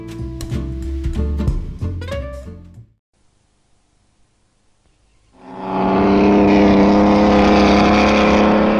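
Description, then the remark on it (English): Engines of 1920s racing cars rev hard with rising, falling pitch, fall silent for a couple of seconds, then return as a loud, sustained roar. No one speaks. “These are cars of the 20s, unique in the skill and craftsmanship that went into their construction.”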